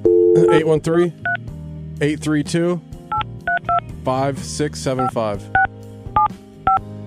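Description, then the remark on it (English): A string of short, dual-pitched telephone keypad tones beeps out one by one at an uneven pace, clear, as a pizza restaurant's phone number is dialed, interleaved with people talking between presses. “Find me Tate's Pizza phone number. Like, find me Tate's Pizza's phone number. And I'm going to call down and say, hey, we're trying to talk about...”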